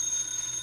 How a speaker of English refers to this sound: The phone. That's a phone. Who'd be calling me in the middle of the night? It must be an emergency. It's 4 o'clock in the morning.